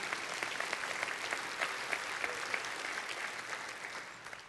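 An audience claps steadily, many hands producing a dense, sustained burst of applause at an even loudness that tapers slightly at the end, with no voices standing out.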